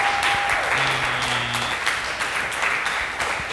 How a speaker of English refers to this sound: Hey, clap for everybody you've seen. This has been a fun show, right?